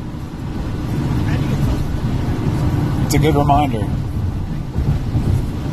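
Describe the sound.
Steady low road rumble from a car driving down a highway in rain and traffic, with a brief whooshing swell around the middle as something passes; a man talks over it throughout.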